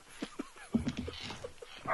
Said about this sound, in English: I've got to let a dog in because it's barking outside now.